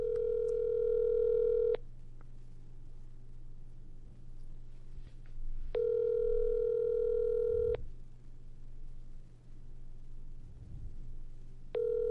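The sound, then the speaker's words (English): A phone call to a cousin rings while it waits to be answered: steady two-second ringback tones repeat after long pauses, three in all, over a low constant hum with no voices. “Let's see if he answers.”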